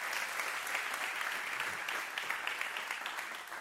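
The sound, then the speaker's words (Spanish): A crowd applauds the Lord at a preacher's call, a dense wash of many hands clapping at once that holds an even level throughout, with no voices standing out. “Dale un aplauso al Señor si lo crees.”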